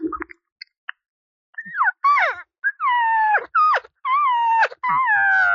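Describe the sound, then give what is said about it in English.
A game call blows a run of about six whiny, nasal cow calls, aimed at a bull, each a high tonal mew that bends and drops in pitch, coming in quick succession after a few soft clicks. “And I'll hit the sounds a little more with the cow.”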